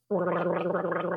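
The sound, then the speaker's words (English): A swallowing therapist gargles steadily for about a second, a continuous bubbling rattle in the throat that starts abruptly and holds at an even loudness with no talking. “Gggggg (Gargle Noises)”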